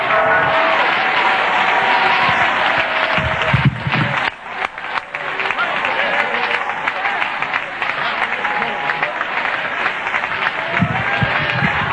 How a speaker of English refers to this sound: Oh, clap your hands and shout unto the Lord.